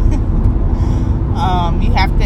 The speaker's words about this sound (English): Y'all hear me driving down I-95, bobbing and weaving throughout traffic.